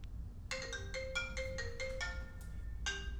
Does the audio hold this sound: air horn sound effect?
no